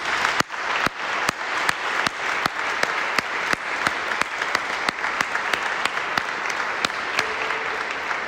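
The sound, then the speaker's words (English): An audience applauds veterans who have stood up, steadily for several seconds, a dense wash of clapping with a few sharper claps popping out at a regular pace; no one speaks over it. “Stand up. Stand up. Applaud for them.”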